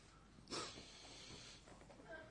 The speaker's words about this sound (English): The more you sniff it, the more you'll sniff all the smell out of it. You're inhaling the aroma off it.